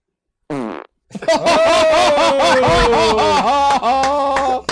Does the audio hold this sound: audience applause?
no